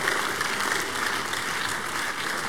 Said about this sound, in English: For this amazing act of God, shall we rise to our feet, giving Jesus a big hand of praise for what he has done. Glory to God. Now give him a bigger clap of praise.